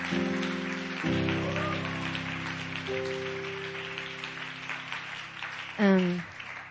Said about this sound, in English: Come on, let's give a clap offering to God.